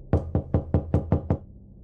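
Six loud, evenly spaced knocks on the front door of a home in Austin, Texas, at 2 a.m. in March 2001, sharp, in a quick steady rhythm with a short quiet pause after. No voices.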